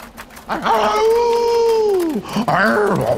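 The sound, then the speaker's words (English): A voice yowls and howls like a wolf: one long, loud, wavering cry that sags in pitch at the end, then a shorter rising-and-falling howl right after. It is the game character Zev, tied to a tree in the woods. “Apologies for that yowling and howling.”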